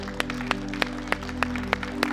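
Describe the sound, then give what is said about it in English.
A church audience claps in praise to God in steady unison, about seven sharp, evenly spaced claps over a sustained low musical hum, with no voices. “Come on and give him your best hand clap of praise.”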